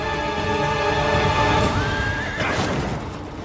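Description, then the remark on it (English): A horse in a video game whinnies loudly with a long, wavering neigh that rises and falls, over a steady rumble and faint hoof clatter, ending in a sharper burst before trailing off. “Just go up to them in wild, jump on their backs, stay on for about 30 seconds, and then you have a horse for life.”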